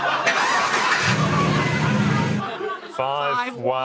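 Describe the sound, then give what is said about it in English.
A car fitted with a high-tech immobiliser that needs a secret password to start: the engine cranks and catches, settling into a steady low hum under a broad noisy wash, before a voice comes in over it near the end. “This one needs a secret password to turn the car on.”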